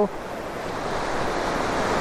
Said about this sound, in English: I'll just wait for some nice texture in the waves. Here we go.